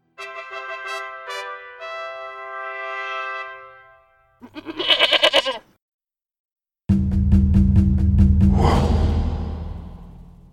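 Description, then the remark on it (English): A goat bleats three times, loud: a long wavering cry, a short harsh burst, then a rough drawn-out bleat after a brief silence. No one speaks. “So, if you're ever near Saskatchewan, be sure and go give a salute to Sergeant Bill, Goat, and heroic veteran of the Fighting Fifth.”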